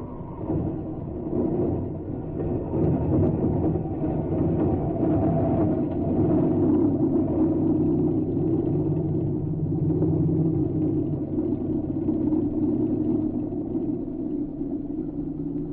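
A heavy, steady engine roar rumbles for the whole stretch as a plane comes down onto a field nearby at night, loud and continuous with no voices.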